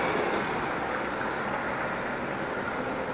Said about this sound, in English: we've just got a truck going past, so forgive me for the sound here.